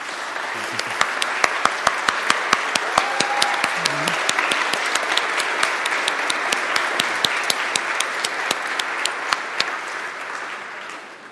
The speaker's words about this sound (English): So if you're in that group, family member of a confirmand or somebody being received this morning, would you please stand up and let's give you a hand of applause.